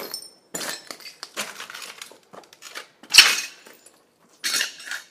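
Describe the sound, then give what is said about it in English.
Broken glass left by vandals clinks and crunches underfoot at a vandalized place near Assisi, Italy, in a series of irregular bursts, with one louder sharp crackle near the middle and short quiet gaps between steps. “There's glass all over the place.”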